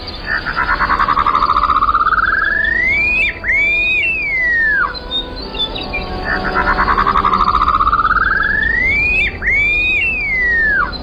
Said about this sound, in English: This may or may not be the intention of the upland sandpiper's call, but part of it does kind of sound like a wolf whistle.